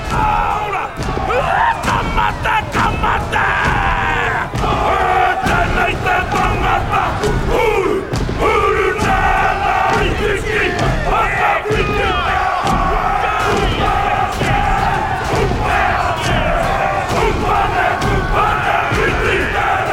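A loud, continuous haka: massed male voices chanting and shouting in unison, punctuated by sharp rhythmic slaps and stamps, with a crowd of townsfolk jeering and hissing throughout.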